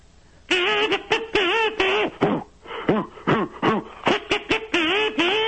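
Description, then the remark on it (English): Three kazoos played at the same time by one player buzz out a bouncy tune in short, punchy notes grouped into rhythmic phrases, the nasal, reedy melody fairly loud and played alone without talking. “I can play three kazoos at the same time.”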